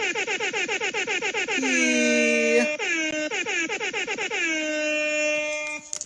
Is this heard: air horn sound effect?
yes